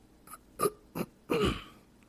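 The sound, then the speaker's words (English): Someone clears their throat: three short, raspy huffs in quick succession, then a longer, rougher, voiced rasp that trails off. Fairly soft, with no talking. “I'm trying to clear my throat, y'all.”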